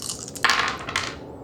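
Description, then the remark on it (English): Several dice rattle and tumble across a hard table, with bright clattering bursts and a couple of sharper knocks before they settle. Fairly clear, with no voices. “Okay, he's got to roll... chances are much better now. 4 hit dice, it's got to be 16 or lower.”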